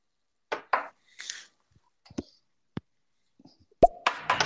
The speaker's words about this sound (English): I have to say, your lightning round sounded more like a bong hit with electricity added to it. See? Okay. That was not a lightning strike. I'm just saying.